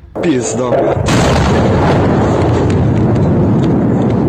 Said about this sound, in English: That is a bomb. What Ukrainians say is a vacuum bomb that Russia uses. Their invasion now in day number six.